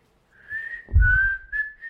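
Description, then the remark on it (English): A person whistles a slow, clear melody from the Kill Bill Vol. 1 film soundtrack, holding long sustained notes with a brief low thump partway through and no talking. “Well, my third favourite, I'm going to whistle out.”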